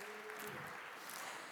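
Steady clapping from an audience, a dense, even patter of many hands that fills the whole moment at a moderate level, with a faint low tone briefly under it at the start.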